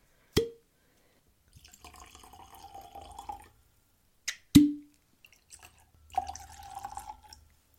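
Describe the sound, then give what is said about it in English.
Whiskey is poured into glasses twice for a tasting. Each pour opens with a sharp clink and then a steady gurgling trickle for a couple of seconds, fairly quiet, with no talking. “So let's get these poured and jump right in.”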